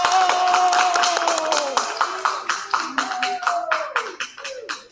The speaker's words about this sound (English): You got a pretty good round of applause from these citizens here.